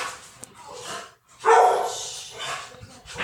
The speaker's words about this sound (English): We'll let Otis calm down. Yeah. Otis is a nice doggy, though.